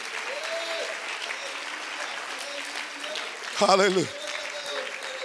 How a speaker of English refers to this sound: Come on, somebody clap those hands a little bit louder.